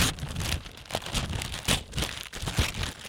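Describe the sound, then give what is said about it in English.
Crinkling and ripping of wrapping paper being torn off a present as it is unwrapped, a series of uneven, papery bursts over a few seconds with no talking. “So are you going to unwrap my present right now?”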